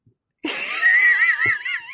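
A pen squeaks as it scratches out something on paper: one continuous, high, wavering squeal that starts abruptly and runs for about a second and a half, fairly loud, with no talking.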